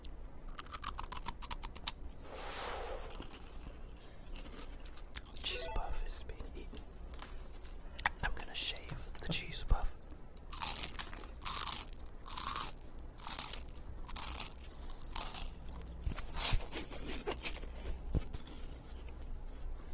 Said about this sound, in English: got double cheese puff eating action here between the two microphones. Cheese puffs. Very crunchy and cheesy goodness. 45% less fat than your normal cheese puff.